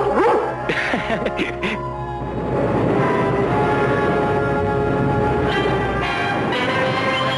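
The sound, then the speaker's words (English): A cartoon dog barks and yips in a quick, excited burst of several yaps, then carries on over a busy, rumbling background that fills the rest of the moment. “There's only one super dog, and I should never doubt him.”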